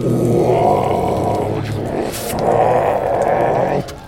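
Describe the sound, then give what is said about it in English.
A human voice imitates a monster's roar in two long, loud, gravelly growls, separated by a brief hissing breath, each sustained for over a second before cutting off. “Now it roars, and you can just make out through the abomination of fangs that make up its mouth.”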